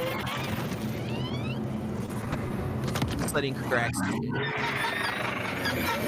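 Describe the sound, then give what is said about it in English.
The dragon Caraxes roars, screeching and high-pitched with sweeping, almost bird-like squeals over a deep, horse-like growl, rumbling steadily for several seconds while people talk over it. “I like that creepy horse growl.”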